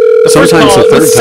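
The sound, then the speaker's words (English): A steady electronic phone tone drones continuously as a cell phone call is redialed a second time after going to voicemail, with voices talking over it for most of the moment. “Call right back right now? You do a second time. I'm going to do that.”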